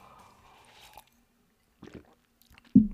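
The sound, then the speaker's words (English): Wet mouth sounds of someone sipping hot green tea, a soft slurp followed after a short pause by a louder gulp, over a faint background hum. “So why don't we have our last little sip of green tea for the year?”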